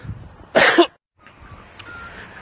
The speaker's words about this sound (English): Hang on a second while I clear my throat.